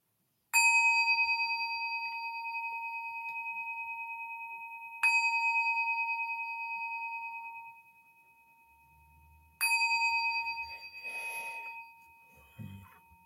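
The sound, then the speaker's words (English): A bright meditation bell kept on a desk is struck three times to begin a three-minute meditation, each strike ringing out with a clear sustained tone that slowly fades, with a few faint rustling and handling noises near the end. “Okay, I even have my trusty bell right here, which lives on my desk.”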